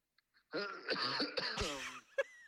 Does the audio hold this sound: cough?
yes